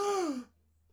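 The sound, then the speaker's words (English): A single dramatic gasp, breathy and voiced, sliding downward in pitch for about half a second before cutting off into near silence with a faint low hum underneath, made as a reaction to the name of the wrestler The Shockmaster. “The Shockmaster, gasp again, is a fat bloke in a glittery stormtrooper helmet, and he's supposed to be the master of shock.”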